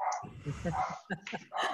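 A dog barks several times in quick, uneven bursts, fairly loud, with a few short yips mixed in and no talking.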